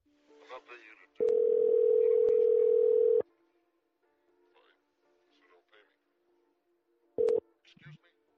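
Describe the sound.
A phone call placed live on air through a Rodecaster rings out over the line: a loud, steady electronic ring tone lasting about two seconds, then a brief second burst, with faint voices murmuring between.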